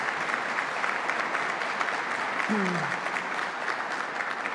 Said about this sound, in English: So let's give another round of applause to our host here today.